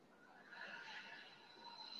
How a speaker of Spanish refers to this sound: Entonces, lo que vamos a hacer con la primera, que es lo siento, vamos a inhalar. Hacemos una pausa, exhalamos